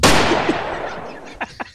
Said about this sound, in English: With the golden gun. Like, nah, where's the gunshots?